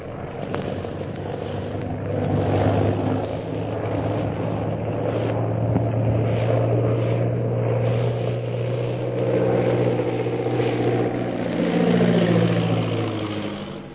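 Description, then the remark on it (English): A propeller plane's engine roars steadily as it comes in from a hill, its droning pitch rising and falling slightly as it circles for a landing, with no voices over the sound. “the plane piloted by Derek Bluger roars in from the hill”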